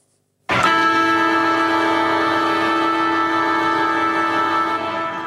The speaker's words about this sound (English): Really rings out that one. Oh, now what I love about this one is that second reverberation of the siren to really just drive it home. I love it. I love hearing it at games, and it really builds up that big game atmosphere, I think.